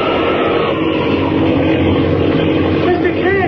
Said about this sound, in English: Our plane's going down to us in a tailspin.